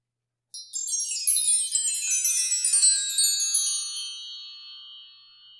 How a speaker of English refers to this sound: And then we're going to be using the wind chime.